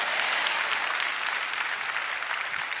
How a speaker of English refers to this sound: If you're a double blessed person, give the Lord a clap offering and shout amen.